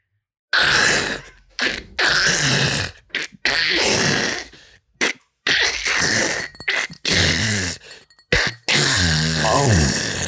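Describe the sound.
A person vocally imitates an ice maker: a string of loud, harsh hissing and gravelly bursts broken by short pauses, finishing with a buzzy, wavering tone.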